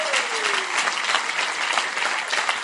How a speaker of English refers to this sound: Why don't you clap for yourselves again? Wow.